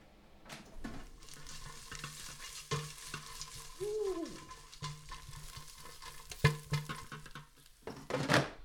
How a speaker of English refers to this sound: The tofu's in the air fryer. One sec, let me mix this bitch up.